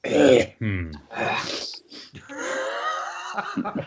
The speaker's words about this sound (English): You know, I've got enough of these, like, pre-episode, like, gurgle barf coughs that I'm just going to stitch them all together. I'm going to release. It'll just be like a crappy episode. 30-minute track of grumbling and groaning and hacking